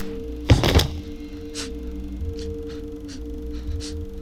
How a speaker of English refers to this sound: And I still flinch at both of the shots, like, again, like, and the gunshots are, like, not super elaborate like the shotgun was, right?